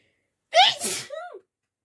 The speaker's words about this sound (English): a sneeze is coming.